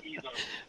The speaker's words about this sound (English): I'm hearing myself in delay there some kind of way.